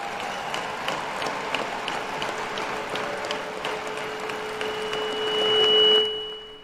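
Light, scattered golf clap from a small crowd of about five people at an HBCU, a quick patter of hand claps with no cheering, and a faint steady hum that swells briefly near the end.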